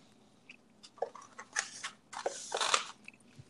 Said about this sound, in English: Yeah, I listened to it. You could not hear me chewing at all.